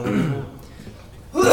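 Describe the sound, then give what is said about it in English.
A brief voiced sound opens, followed by a quiet pause, then a single loud, sharp sneeze bursts out at the very end, breathy and explosive. “Bless you.”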